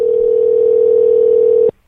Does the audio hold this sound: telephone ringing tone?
yes